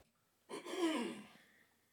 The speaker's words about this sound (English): We have to cough again.